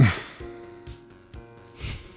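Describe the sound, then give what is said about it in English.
Three quick sniffs of a person's head spaced about half a second apart, each a short breathy rush through the nose, over a faint steady tonal background with no talking. “As I sniff this beautiful head.”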